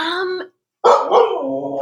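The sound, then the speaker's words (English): A dog barks twice, a short harmonic bark followed after a brief pause by a louder, longer, drawn-out bark that trails off slightly whiny. “Your dog thinks so. Yeah, my dog really thinks so.”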